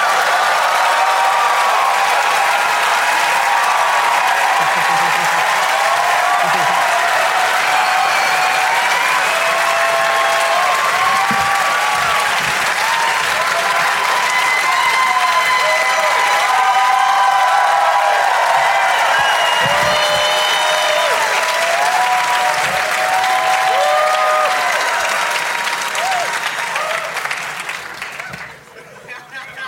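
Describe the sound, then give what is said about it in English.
A crowd applauds loudly and steadily for close to half a minute, welcoming guests Ken Jennings, W. Kamau Bell, Rory Scovel and Werner Herzog, with whoops and cheers rising over the dense clapping before it quickly fades out at the end. “Everybody, please give a big, warm welcome to Ken Jennings, W.”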